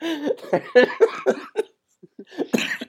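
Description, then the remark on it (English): A person coughs repeatedly in a rapid, harsh burst of several coughs, pauses briefly, then lets out a few more rough coughs near the end. “Now I'm coughing.”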